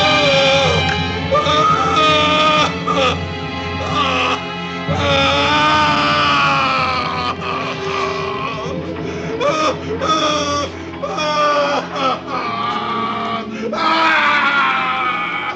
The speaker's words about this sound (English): But can I just mention that when he gets scalded, it's like the longest scream ever. And when the ambulance finally turns up, he's still screaming.